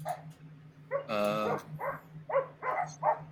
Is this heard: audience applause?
no